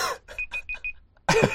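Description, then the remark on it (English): A phone app notification chimes, four quick high-pitched beeps in an even run, then a louder, noisier burst of sound with the same tone ringing through it. “Jesus, man, sort out your notifications.”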